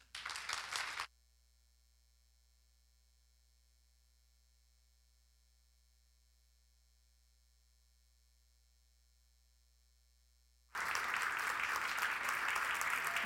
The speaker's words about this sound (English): They clap louder for you than me.